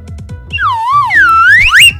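A whistle is blown in one long, wavering note that dips, climbs and swoops upward at the end, loud and close over a thumping low musical beat.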